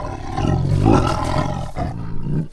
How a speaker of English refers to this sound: don't look now, but there's a tiger in here with us.